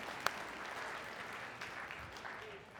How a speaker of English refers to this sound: Just what'd you resolve to do, dude? Eat slower? That's what a good resolution. Let's clap it up. I like that, man.